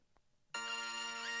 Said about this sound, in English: All right. Let's test our buzzers, please.